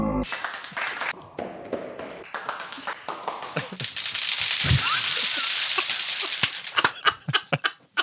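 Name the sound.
soundboard applause clapping effect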